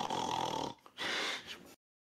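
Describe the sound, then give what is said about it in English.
A person mimics snoring with two loud, raspy snorts, a long rattling inhale followed by a brief pause and a second harsh snore, then silence. “You were trying to stay with the fucking snoring thing”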